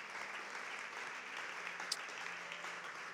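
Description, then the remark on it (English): Steady crowd applause fills the whole stretch, a dense, even patter of many hands clapping at once with no voices standing out, holding a constant moderate loudness throughout, given after a prayer. “Come on, would you guys give a round of applause for that?”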